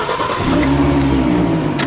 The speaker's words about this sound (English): This here is a 2013 V6 Mustang.